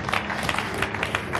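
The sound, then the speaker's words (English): An audience claps together in a dense, steady burst of applause, many hands overlapping into a bright, crackling wash that stays fairly even for about a second and a half. “Oh, I think I can clap your hands for that.”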